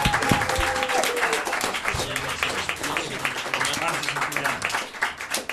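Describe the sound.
A crowd bursts into sustained applause, dense rapid clapping filling the space at steady loudness for several seconds, with faint voices and a brief tone mixed underneath.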